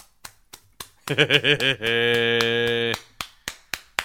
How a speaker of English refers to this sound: Yeah, and oh my god, it is driving me nuts. Because obviously you can't like itch your tattoo, so you got to slap it.